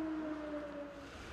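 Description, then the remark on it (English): An air raid siren wails in the frontline city of Kupiansk at Christmas, a steady, slightly falling tone over a wash of background noise, sustained throughout without any voices. “Days are punctuated with artillery shells and sirens.”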